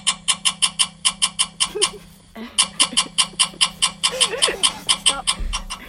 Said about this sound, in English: Stop. Yo. What is going on? Who is honking their horn? What is happening?